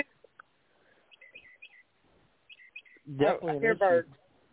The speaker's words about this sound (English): Oh, I'm standing outside. I got the tree. The tree's loaded with birds. Well, it sounds like it's whistling.